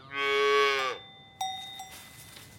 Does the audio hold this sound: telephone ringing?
no